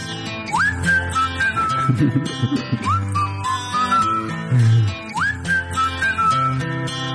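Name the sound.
whistling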